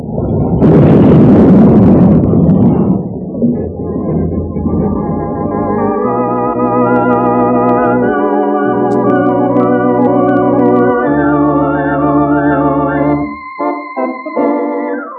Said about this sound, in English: when it plowed into the back end of the work train, it scattered men in a circle 200 yards wide.